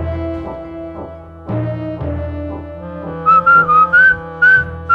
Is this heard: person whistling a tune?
yes